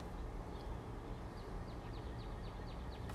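A bird chirps in a quick series of short, repeated notes at 6:32 a.m. on a spring morning, Monday, May 2, 2022, over a steady hum of outdoor background noise, fairly soft, with no one talking.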